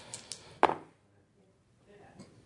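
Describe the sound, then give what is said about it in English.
A short arrow sound effect of a second arrow hitting: a couple of quick flicks followed by a sharp, solid thunk of the arrow striking its target, which fades quickly into near silence. “Second arrow hits.”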